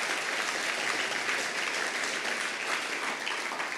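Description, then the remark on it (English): An audience claps steadily throughout, a dense, even wash of many hands that holds at a constant level without rising or fading, and no one speaks over it. “So let's clap for that, because that is amazing.”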